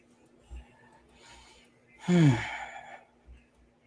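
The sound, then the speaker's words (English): A single yawn, a breathy inhale sliding into a drawn-out voiced groan that falls in pitch, with soft breathing noises before and after it. “I just yawn it out, y'all.”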